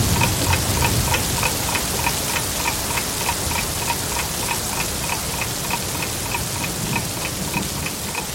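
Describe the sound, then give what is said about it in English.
Steady rain hisses continuously throughout, rain at a cricket test match, with a clock ticking briskly and evenly over it. The rain stays at a constant moderate level, and no one speaks. “Yes, rain and time wasting.”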